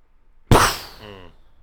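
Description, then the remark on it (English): A voice imitates a cannon blast: one sudden explosive burst of breathy noise that starts loud and fades out over about a second, ending in a brief voiced rumble. “Give me your best cannon sound.”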